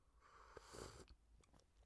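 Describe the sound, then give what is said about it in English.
An airy slurp of someone sipping peppermint licorice tea with monk fruit from a mug with a little fox inside, lasting about a second, followed by a few soft swallowing clicks. Quiet, with no talking. “Let me sip this tea.”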